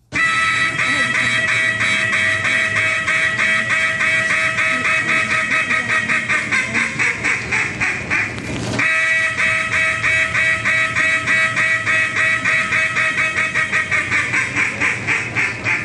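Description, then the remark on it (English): A duck call blown by the 2011 duck calling world champion, a rapid, continuous run of loud, nasal quacks pulsing steadily for about sixteen seconds with only a brief break midway and no talking. “we have on the phone …, the 2011 Duck Calling World Champion”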